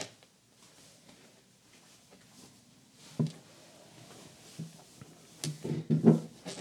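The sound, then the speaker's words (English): Soft shuffling and handling noises build to a cluster of low thuds near the end as a door is pushed shut, moderately loud, with no talking. “I'll close the door real quick.”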